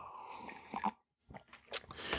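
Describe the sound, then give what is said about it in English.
Someone sips coffee: soft mouth and cup sounds, a brief silence, then a quick airy slurp with a sharp hiss, followed by a faint swallow and breath. “And I'm going to take a sip of mine right now.”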